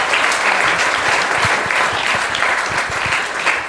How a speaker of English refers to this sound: No, you guys were fantastic. Another round of applause, please, come on. Thank you.